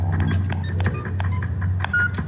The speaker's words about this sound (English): Yeah, that's not them. That's just four beeps.